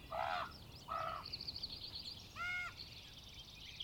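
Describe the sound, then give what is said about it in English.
Several birds flocking to an orchard in spring call outdoors: three harsh, crow-like caws come a second or so apart, over a steady, thin twittering of smaller birds chirping in the background. “The birds were flocking to this orchard to make nests and sing songs, and Pomelo seemed to like this, but Lemon, on the other hand, wasn't too fond of the birds.”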